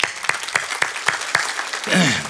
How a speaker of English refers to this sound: If you clapped, I'll take that as your commitment. You'll be there next Saturday.